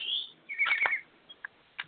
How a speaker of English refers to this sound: Oh, I hear some birds on the line.